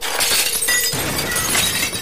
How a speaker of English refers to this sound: As the windows burst from within, a ragged gang of males surge screaming from the villa like rats from a burning haystack.